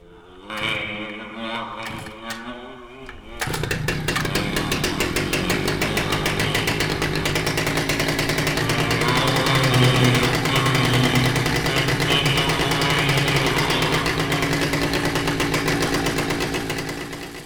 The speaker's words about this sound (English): The chainsaw started on the first pull with a belch of smoke that bathed Trevor in fumes, just as the old man had promised.